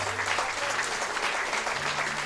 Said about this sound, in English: And I think it was a remarkable victory. And quite rightly, they're getting well applauded. That was a terrific result.